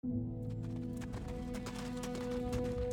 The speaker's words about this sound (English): Late in the day on February 1st, 1891, a horse-drawn carriage made its way north to Midtown Manhattan.